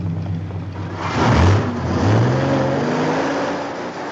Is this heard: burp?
no